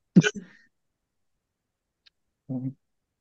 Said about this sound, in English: Oh. You can feel that, like, it's winding down, though. Like, the coughing, at least.